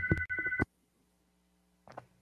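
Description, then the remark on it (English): A phone rings with a loud, warbling electronic trill in two quick pulsed bursts, followed by near silence and then a faint, brief sound near the end. “I think my phone's ringing in the area.”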